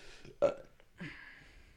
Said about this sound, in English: I've never been appeased to like burping on cue or farting on cue. Yeah, I can burp on cue, but how can excuse me.